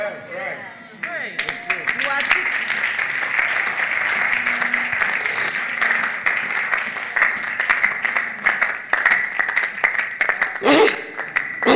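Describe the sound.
An audience claps loudly and steadily throughout, a dense, sustained wash of many hands with sharper bursts near the end, while voices murmur and call out underneath.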